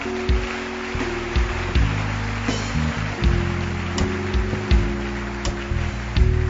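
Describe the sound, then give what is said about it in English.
An audience applauds for people receiving Jesus for the first time, a steady, dense wash of clapping while sustained keyboard chords shift underneath, with a few sharper claps standing out from the crowd. “Keep clapping for them.”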